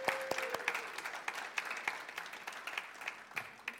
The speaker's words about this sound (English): And so I just want to take a moment and ask anybody who has ever helped or is currently helping in the storehouse to raise their hand. And now let's give them a round of applause.